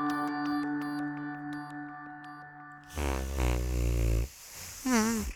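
A steady tonal drone gives way to a loud, low, buzzing fart that rumbles for over a second, followed after a short pause by a briefer, wavering, squeakier one.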